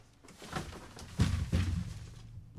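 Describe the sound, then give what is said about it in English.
A door swings shut, giving two dull, low thumps about a third of a second apart over faint background rustle, with no one speaking. “Can you wait up by the go out and close the door.”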